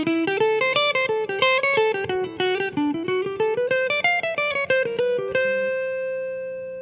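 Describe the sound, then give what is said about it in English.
A fast, improvised-sounding melodic line on an electric instrument with effects, played over chord changes, running in quick stepwise notes that slip through chromatic passing tones, then ending on a sustained note. No voices. “They would often probably add in some chromatic passing tones. So if they were playing over those changes, it might sound more like this.”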